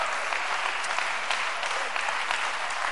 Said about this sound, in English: Come on and clap your hands and praise him.